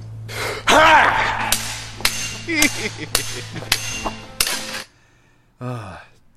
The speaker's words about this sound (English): I felt really bad for the actual katanas in this scene. They're smashing them, man. Because, man, you are really not supposed to hit katanas blade to blade like that.